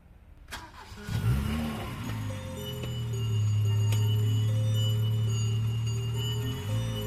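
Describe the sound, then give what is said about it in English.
A police car's engine cranks and catches after a brief click, then settles into a loud, steady, rising hum as it drives off, with no one speaking. “You see, you notice just, I don't know, in the background as you're heading over there, the police car drives off.”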